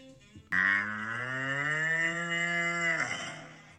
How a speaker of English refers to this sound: But you have to remember, a cow is for life, not just for Moo Ridge.